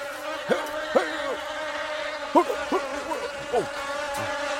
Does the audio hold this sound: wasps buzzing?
yes